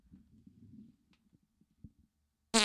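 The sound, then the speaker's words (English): A fart right up against the microphone: a low, sputtering rumble that breaks into a few scattered pops and fades, then a sudden loud burst of noise at the end. “That's our first fart that was picked up on the show, dude.”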